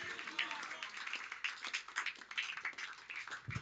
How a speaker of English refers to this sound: Clap your hands and shout and receive wisdom.